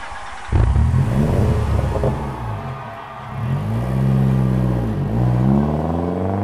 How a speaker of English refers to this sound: As the engines roar to life, the stage is set for a thrilling race that will decide the fate of our heroes and villains.